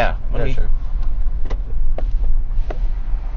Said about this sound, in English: What are they doing? Oh, it's a garbage truck.